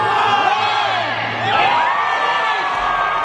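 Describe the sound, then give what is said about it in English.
A large crowd of tens of thousands cheers and whoops at a Christmas tree lighting in New York, a dense, loud roar of many overlapping voices with rising shouts swelling around the middle and holding steady throughout. “And this is good to see that people in New York and up north are going back out, getting outside in big crowds and lighting the Christmas tree.”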